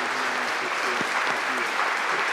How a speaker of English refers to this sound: And he's worked tirelessly behind the scenes to get this done. So give him one more round of applause.